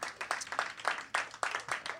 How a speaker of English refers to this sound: Our next poet. Yeah, give him another round of applause.